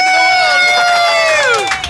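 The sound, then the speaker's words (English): A large crowd in Australia shouts "Chicken Fest!" together in a loud, sustained chant, voices blending into a bright wall of sound that slides downward in pitch as the cry trails off after about two seconds. “As you heard there, we ended up with the whole of Australia yelling Chicken Fest.”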